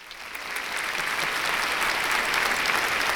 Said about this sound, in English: Another pause for applause